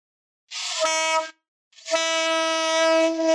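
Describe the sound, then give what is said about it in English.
Two loud, blaring saxophone honks, a short one and then a longer sustained one after a brief gap, breathy and raw like a beginner struggling to get a clean note. “That's what it usually sounds like when somebody starts to play sax.”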